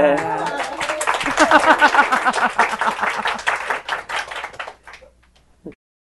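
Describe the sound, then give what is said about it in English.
A burst of dense, crackling applause with many hands clapping at once, swelling for a few seconds before thinning out and stopping, with some voices mixed in at the start. “Should someone turn on the applause light?”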